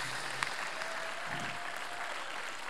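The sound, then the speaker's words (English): An audience applauds steadily, many hands clapping in a dense, even wash of sound that holds for the whole stretch, with no voices standing out, welcoming students invited up to share testimonies. “So can we give a round of applause, a welcome to them?”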